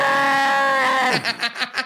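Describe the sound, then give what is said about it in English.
A person imitates a loud scream-like howl: one long, steady high-pitched cry that suddenly drops in pitch and breaks into a few ragged, pulsing gasps. “Give me your best scream like howl.”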